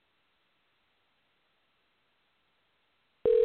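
A few seconds of faint line hiss, then a loud, steady phone line tone starts abruptly at the very end and is cut off after a moment, on an unanswered call with no voicemail set up. Nobody answers or speaks.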